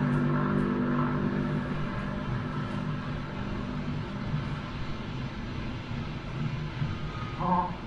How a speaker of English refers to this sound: And then they hear a sound in the sky. And it's an airplane. This is a first sound film, so you can kind of tell that they're kind of gratuitously using sound, right? Whenever they have the opportunity.